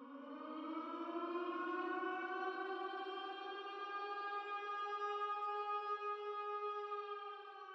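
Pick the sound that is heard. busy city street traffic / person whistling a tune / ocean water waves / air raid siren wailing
air raid siren wailing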